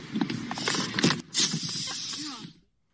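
A loud, steady hiss of air rushing out of a vehicle's tire punctured by an elk's antlers at Yellowstone National Park, broken by a brief gap, then cutting off abruptly; muffled voices and movement sound faintly underneath.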